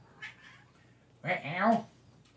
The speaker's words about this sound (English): Let me let the cat in real quick because she's out there meowing. Hang on. Come on, Gracie. Hi, Grace Kitty.